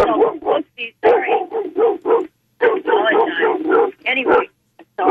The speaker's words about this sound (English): We can't have just the barking dog in the background